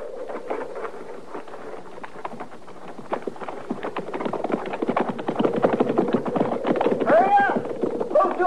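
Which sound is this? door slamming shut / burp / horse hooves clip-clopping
horse hooves clip-clopping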